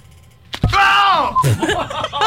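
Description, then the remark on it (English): A single sharp smack lands, like a slap to the face, and is immediately followed by a loud, drawn-out pained groan and more vocal reactions. “You think that wasn't harder than you slapped me?”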